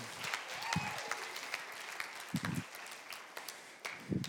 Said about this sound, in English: So this morning I want my beloved, I asked her to come. I want her to stand up, turn around, give her a cheer.